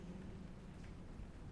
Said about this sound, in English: Rolling distant thunder is a sign of the exhilaration and power to come. Take it inside you. Feel energized by the force of thunder.